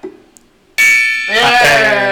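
gong being struck

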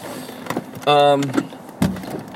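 car being started

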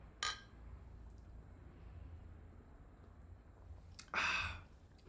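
sipping beer

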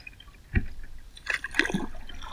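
river water flowing

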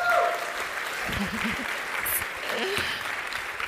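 audience applause and cheering

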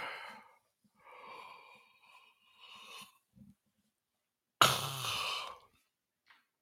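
yawn

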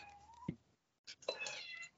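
cat meowing loudly

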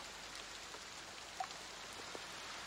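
rain falling

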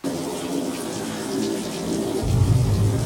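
rain falling

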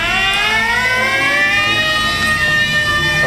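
wailing siren

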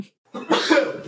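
sneeze

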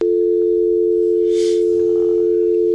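telephone dial tone

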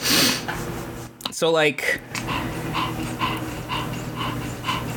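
dog panting

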